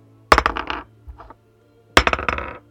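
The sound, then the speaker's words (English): A die rolled for a perception check in a tabletop game clatters across a hard table in two quick bursts of rapid, bright bouncing clicks, with a softer brief rattle between them and a low steady hum underneath, landing on a natural one. “Oh, I should have kept what rolled over there. That's a natural one.”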